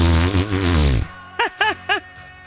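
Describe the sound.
A loud, buzzy fart noise blown with the mouth lasts about a second, then three short, rising vocal yelps follow in quick succession.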